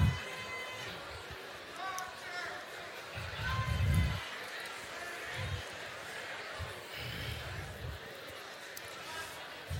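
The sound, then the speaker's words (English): An audience chats among themselves, debating with their neighbours whether Coach Belichick or Tom Brady is the most important part of winning. Many overlapping voices form a steady, dense hubbub with occasional low thumps and a brief louder swell partway through. “Come on, take 20 seconds. Talk to your neighbor real quick.”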